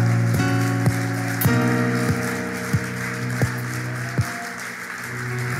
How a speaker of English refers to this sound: But there's no love like the love of Jesus. Let's clap for him and thank him.